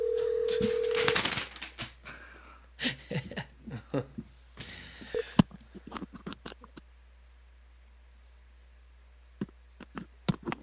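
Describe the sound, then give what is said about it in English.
A brief steady phone tone gives way to a rapid run of short telephone dialing beeps, followed by a scattering of fainter clicks separated by quiet gaps, as a call is placed to four-time arenacross champion Josh Demuth. “Speaking of gangster or the sheriff, let's give him a call.”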